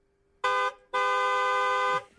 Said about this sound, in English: That wow. just sounded like the second horn was maybe a little louder.